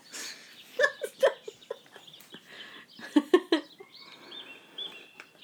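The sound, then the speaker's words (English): Chickens cluck in short, irregular bursts, several birds with choppy, overlapping calls and a few higher chirps, no talking underneath. “Pause the birds.”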